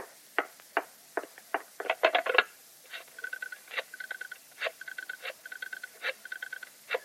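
A telephone being dialed: a run of sharp clicks, then evenly spaced ticking bursts with a faint whirring tone between them, all without any talking.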